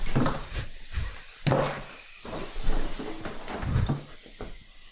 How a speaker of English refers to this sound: So someone sent us hairspray. Thank you very much. And that is how you use it. You got to push that white button down and then the hairspray comes out.